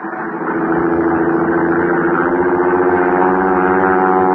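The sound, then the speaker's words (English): Al's small propeller plane drones steadily as it flies away from a dry lake bed into the night darkness, its engine a buzzing, harmonic hum that holds at an even, fairly loud level throughout, with no voices. “I watched Al's plane until it was swallowed by the darkness.”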